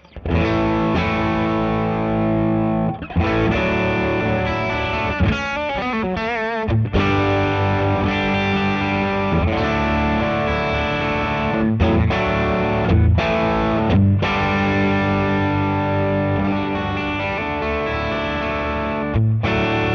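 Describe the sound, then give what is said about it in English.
An electric guitar played through a mild fuzz on the smooth setting, gain at 2, bass down, treble at about 10, with sustained, harmonically rich chords and a few quick strummed bursts, steady and fairly loud with a smooth, lightly saturated tone and no talking. “a decent, I hate to say decent, but you know, a mild fuzz, I guess is a good way to put it. So it's not like a fuzz face, but it's kind of fuzzy, if that makes sense.”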